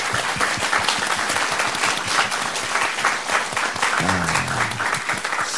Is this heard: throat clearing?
no